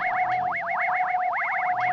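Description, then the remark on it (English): A Superman alarm watch signal sounds inside a lead-lined room: a loud, continuous electronic warble of rapid rising chirps repeating over a steady high hum, with no voices. “I have a Superman alarm watch.”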